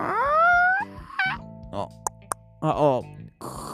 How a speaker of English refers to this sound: However your door creaks. I don't know if yours creak.